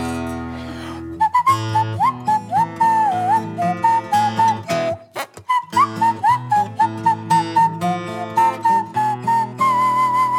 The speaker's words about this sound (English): This is the end of the instrumental verse. It's not really an instrument, but it could be worse. And if I don't whistle